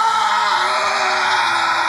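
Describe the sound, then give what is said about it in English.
A man roars at the top of his lungs, one raw, strained bellow held steadily for about two seconds, loud with no pause or other talk. “You hear … roar at the top of his lungs.”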